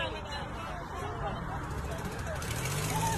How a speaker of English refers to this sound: Yeah, lawnmower. Sounds like my car.